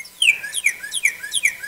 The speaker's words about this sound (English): That's a goddamn cardinal. It's a goddamn cardinal? Yeah.